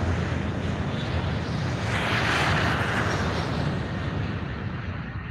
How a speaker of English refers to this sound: He gone. Start the plane up. He gone.